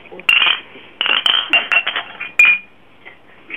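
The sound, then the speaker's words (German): Glasses clinking together in a toast: several bright clinks in quick succession, each leaving a short ringing tone that fades before the next. “trinkt mit uns, ja. Und von dem her, wir freuen uns auf jeden Fall, dass sie da sind, genau. Prost”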